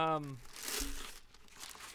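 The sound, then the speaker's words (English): A brief vocal sound gives way to loud crinkling of paper as someone takes a seat on it, a rustling, crackling burst that swells and then continues in scattered crunches as weight shifts onto it. “I want to go ahead and take a seat on the paper here.”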